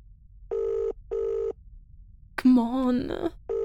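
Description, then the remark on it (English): A phone rings on the other end of the line: steady, moderately loud ringback tone pulses in an even repeating pattern, with a person's voice speaking briefly between the rings. “Come on, pick up! Come on, pick up!”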